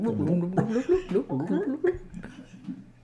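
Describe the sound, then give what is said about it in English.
A wet gurgling swallowing noise made with the voice while swallowing during oral sex, wobbling up and down in pitch for about three seconds before tapering off, with a faint chuckle-like quality. “Instead of that gagging sound that you get on porn, you get this sound.”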